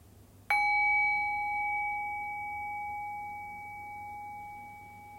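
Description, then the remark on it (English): A single meditation bell is struck once, its clear, pure tone ringing out loudly and then slowly fading over several seconds with a long, sustained decay. No one speaks. “I'll ring the sound of the bell again. Rest your awareness on the sound of the bell.”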